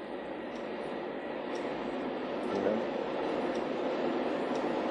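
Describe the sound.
A train rumbles past with steady, broad rolling noise and faint rhythmic clacks, while a voice briefly speaks over it.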